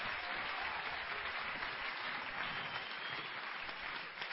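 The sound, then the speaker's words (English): A church crowd claps to welcome Bishop Dagwood Mills, a dense, steady wash of applause that holds at an even, fairly loud level for the whole stretch with no single claps standing out. “Let's clap our hands and welcome Bishop Dagwood Mills.”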